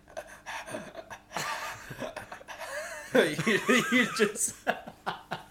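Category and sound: vocal imitation, imitated heavy panting breaths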